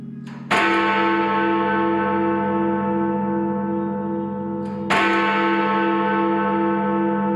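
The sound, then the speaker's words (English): Big Ben, the bell in the clock tower of Parliament in London, strikes twice, about four seconds apart, each deep, loud toll ringing out with long sustained overtones that barely fade before the next strike. “Because apparently switching off the bell in Parliament's clock tower for repairs is a scandal of epic proportion.”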